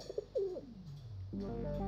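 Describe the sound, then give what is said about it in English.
A pigeon coos, a few short throaty warbles dipping low before a longer, steadier coo swells at the end, with no voices over it. “This episode, we look into pigeons, why they're so good with an urban lifestyle”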